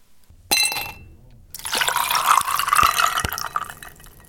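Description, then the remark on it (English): A drink is poured into a glass: a short splash, a brief pause, then a steady gurgling stream that rises in pitch as the glass fills, with faint clinks. “So whatever your potable of choice is, feel free to pour it up and join us”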